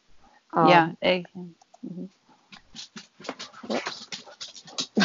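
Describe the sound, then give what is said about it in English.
Dogs coming in: one lets out a short, high whining whimper, followed by soft yelps and a run of light clicks and scuffles, like paws moving around. “My dogs just came in and found me.”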